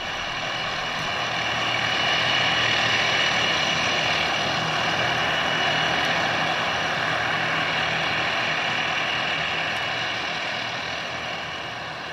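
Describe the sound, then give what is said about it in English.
A loud, steady roar of the propellers of a Tu-95 bomber, two sets of 18-foot blades spinning in opposite directions, droning continuously with layered engine harmonics, swelling slightly then easing as the plane taxis and takes off. No voices. “Here's a clip from a YouTube video of a bear taxiing and taking off. The roar is of course the propellers”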